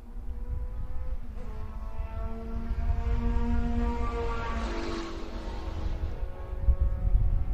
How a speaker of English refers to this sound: Here's our second and third and fourth place cars as they go racing into the final time here.